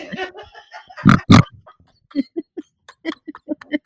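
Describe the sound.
A person mimics pigs, opening with a couple of loud, rough snorting squeals, then a rapid string of short, rhythmic grunts and oinks, fairly loud.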